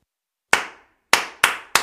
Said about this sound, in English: All you need to do is clap back the rhythm of the words that I say. So if I say, space is the place, you'll clap.